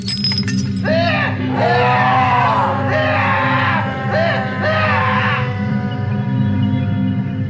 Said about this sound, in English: But I heard something. I mean, the yells that were coming from that bathroom didn't exactly sound human, I'll say that much. Animalistic, maybe, yeah.